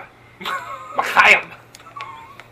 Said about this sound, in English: Bless you.